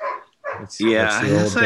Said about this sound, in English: Your dog's barking.